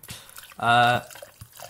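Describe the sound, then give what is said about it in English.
Captain Morgan rum poured into a glass, a brief gurgling pour with a rising resonant tone lasting under half a second, surrounded by faint, indistinct background chatter. “sorry for the Captain Morgan pouring there, but we're at that stage.”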